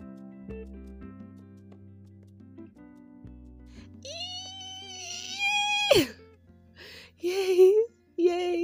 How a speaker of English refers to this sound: This is me screaming because I don't want to scream too loud because I live in rentals and ain't nobody got the money to be hamishwad and taken elsewhere because you're making noise for the people.